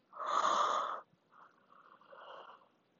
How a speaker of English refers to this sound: Ah. Sorry, I yawned again.